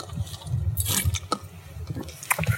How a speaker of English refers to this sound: I want to take a sip of this beverage.